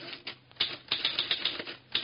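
Rapid typewriter keystrokes clatter in an uneven stream, sharp clicks landing close together, as a news story is typed out onto copy paper, with no voices.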